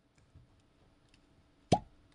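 A single sharp, hollow pop of a cork pulled from a rum bottle with wax on the top, loud, after a quiet stretch of faint handling noise; no one speaks.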